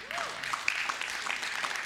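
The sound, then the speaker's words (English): An audience at a church service claps in a steady, dense patter of many hands, moderately loud and even throughout, with no talking over it. “Man, I hope at these other campuses y'all are clapping louder than they are right here.”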